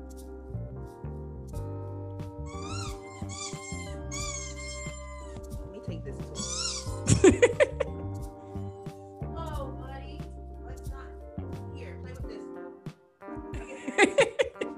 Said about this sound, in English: I don't know what is with dogs. I bought him this today, but like he's just squeaking. It's a pumpkin and it squeaks.